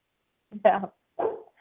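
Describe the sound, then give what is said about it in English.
A dog named Fenway growls in two short, rough bursts separated by a brief pause, with no other sounds around them. “Fenway is growling.”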